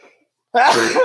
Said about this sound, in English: Bless you.